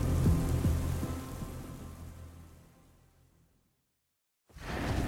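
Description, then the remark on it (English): Thunder rumbles low beneath a steady hiss of rain, the rumble strongest at first and then fading away to a brief silence before the rain noise abruptly returns. No voices. “The sky barked above, but Wesley barely noticed the thunder anymore.”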